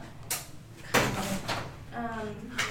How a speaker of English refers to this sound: Yes, this is about the fourth time that we've opened the door.